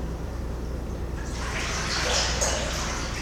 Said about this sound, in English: Sometimes there's water coming out from under the ship.